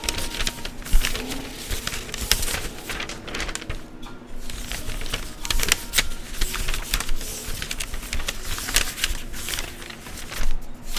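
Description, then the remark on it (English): Paper crinkling and rustling, with dense, irregular crackles and sharp snaps that continue steadily for several seconds. No one speaks. “Alright, let's do the paper first.”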